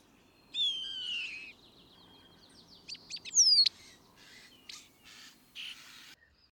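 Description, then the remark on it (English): A starling calls alone in a rapid, varied jumble: a descending whistle, sharp clicks and rattles, a bright rising squeal, then buzzy wheezing notes, over a faint background hum. “Starlings are also known to be accomplished mimickers, so watch out for starlings imitating other birds, such as red-tailed hawks.”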